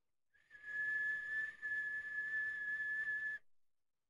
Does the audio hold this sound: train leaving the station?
no